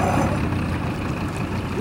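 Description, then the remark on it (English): A boat's motor drones steadily, a low churning rumble with a faint wash of water that stays even throughout the short stretch, with no voices, as the boat turns around to head back to shore. “Let's turn this boat around and get back to shore.”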